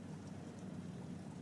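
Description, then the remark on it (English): Steady rain falls in a continuous, even hiss with a low watery rumble beneath it, like running water, with no voices and no breaks. “You can hear water. You can hear rain.”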